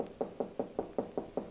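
A rapid, steady series of about seven sharp knocks on an apartment door, evenly spaced, with no voices present.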